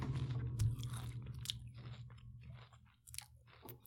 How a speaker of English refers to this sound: Chewing in the mic. You're right. Disgusting.